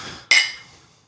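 A single bright clink of glasses tapped together in a toast, sharp, ringing briefly before fading out over about a second.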